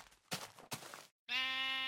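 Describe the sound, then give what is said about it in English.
Two short, noisy bursts are followed by a brief silence, then a sheep bleats loudly and steadily in a single drawn-out, nasal cry that runs to the end. “But we can at least dye this one sheep purple and shear the shorn.”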